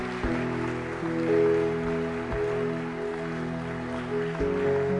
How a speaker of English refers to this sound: Oh, keep clapping. They are still coming.